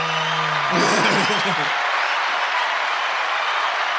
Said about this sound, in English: It's a lot of applause. You deserve it.